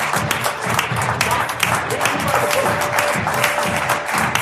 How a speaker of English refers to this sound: Can we give David Osborne a big round of applause?